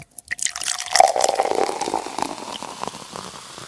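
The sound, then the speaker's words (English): Liquid pours out in a steady, splashy stream for a few seconds, fairly loud, with gurgling and dripping texture and no voices. “Let's also pour one out.”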